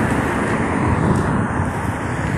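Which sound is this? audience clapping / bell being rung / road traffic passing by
road traffic passing by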